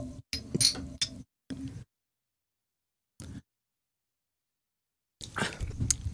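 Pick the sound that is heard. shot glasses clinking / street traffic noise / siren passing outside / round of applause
shot glasses clinking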